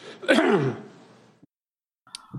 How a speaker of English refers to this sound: Joe Biden, by the way, note the coughing into the hand on multiple occasions. This is the guy who's lecturing you about wearing masks and all the rest, social distancing. He coughs into his hands by habit multiple times.